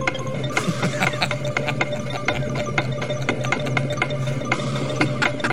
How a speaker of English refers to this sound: What's that sound I hear? Is it the sound of the Brexit countdown clock? I think it might be. The last time we checked in with the Brexit countdown clock, it was going a bit fast.